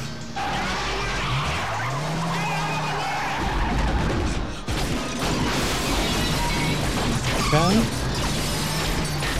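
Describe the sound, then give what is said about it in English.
A red car's engine revs loudly with rising pitch sweeps while its tires skid and screech as it is driven into a house, a continuous dense roar of mechanical noise, with a sharp squeal near the end. “We proceeded to drive the car into the house.”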